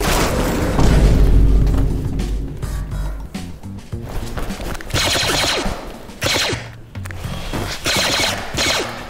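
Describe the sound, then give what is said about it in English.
A deep boom opens into bursts of rapid blind gunfire, sharp cracks firing in quick clusters and pausing between volleys, loud over a low rumbling backdrop, with no one talking. “Can you survive blind fire?”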